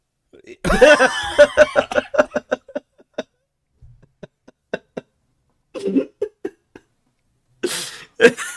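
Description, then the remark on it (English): A woman has a sudden, loud fit of rapid, sputtering coughs as she chokes, trailing off into scattered single coughs before a few harsh gasping coughs return at the end. “She just choked.”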